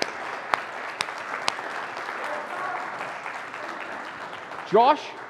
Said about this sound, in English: Let's give Josh Lopez a round of applause.